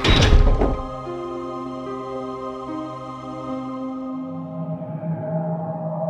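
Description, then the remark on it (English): A heavy iron door slams shut with a loud metallic impact, then a long ringing, humming resonance that lingers and slowly fades over several seconds. “Sam and I walked into the golden light, and the iron door closed behind us.”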